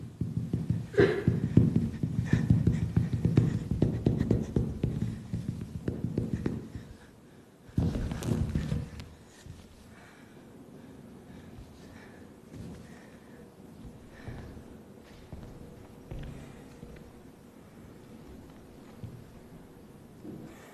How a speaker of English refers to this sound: So I haven't used any sound in this piece. You're meant to just feel the bodies and the sound of the feet. And I find that sound actually quite musical. The presence of the body and the breathing.